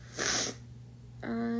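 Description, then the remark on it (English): A single sharp, wet nasal sniffle, lingering after being emotional a few minutes earlier, followed by a short quiet pause before a voice begins speaking. “Sorry guys, I'm like still sniffling because I was an emotional bitch a few minutes ago.”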